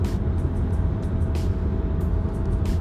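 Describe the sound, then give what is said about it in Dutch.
Steady road traffic rumbles by in a continuous stream, a whole line of cars, with brief hissy swishes as individual cars pass, one after another. No one speaks. “Dan heeft hij weer een hele trein auto's voor laten gaan.”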